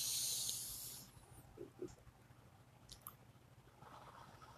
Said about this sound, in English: So, we're gonna start with taking deep breaths through our nose.